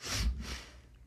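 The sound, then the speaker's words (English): A single sneeze: a quick breathy intake followed by a noisy, hissing burst of air, fairly loud, then fading into quiet with no talking. “Hare, if I chant Gauranga every time I sneeze, I'll be chanting 16 rounds of Gauranga today.”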